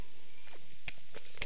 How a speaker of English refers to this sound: Excuse me. I'm going to just have a slurp of water.